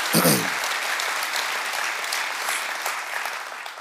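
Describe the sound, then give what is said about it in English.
A crowd applauds steadily with dense, continuous clapping that holds at an even level throughout, a brief vocal cheer or shout rising at the very start. “So, oh, it's so, y'all clap.”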